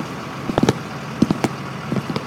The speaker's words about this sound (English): Okay, chevre, the bus is full, find your seats. The doors are closing and we are leaving now.